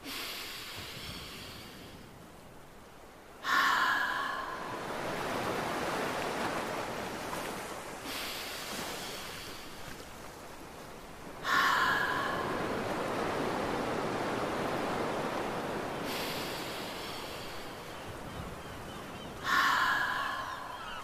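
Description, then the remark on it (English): Three long, slow ocean breaths, steady, each beginning with a sharp intake through the nose and then a broad rushing hiss let out through the open mouth to imitate the ocean, swelling and fading like a wave washing onto shore. No one speaks. “Make a sound like the ocean. Nice work. I'll do three more ocean breaths.”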